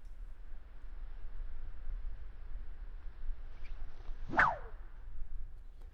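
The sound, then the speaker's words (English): A single quick swish cuts through the air with a sharp, descending whoosh, standing out clearly against a low, steady background rumble. “And the whip will come up along with you.”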